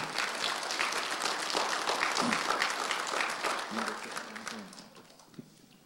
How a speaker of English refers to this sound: Did you tell me you got saved this morning? Yes. Okay. That's good. And you feel satisfied about that, huh? Yes. Okay. That's good. Let's give him some applause this morning.